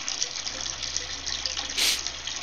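A person urinates in a steady stream: a hissing, watery rush that holds even throughout, with a brief brighter spurt near the end. No one speaks.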